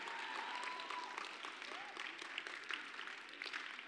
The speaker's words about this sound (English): Praise God for student leaders like that. You got one clap up here,